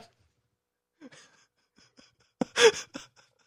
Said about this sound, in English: I'm laughing and yawning.